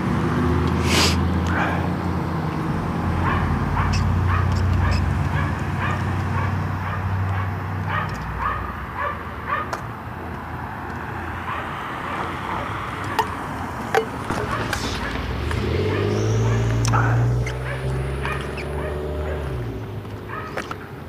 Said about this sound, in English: Our neighbor has a yappy dog. In fact, I think both of them have yappy dogs. The ones behind us, not the ones beside us. Dog gets going, man. It just doesn't stop.